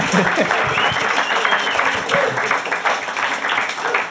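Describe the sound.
A room full of people at a beer tasting night applauds a speaker, dense steady clapping for about four seconds with a few voices murmuring and cheering underneath.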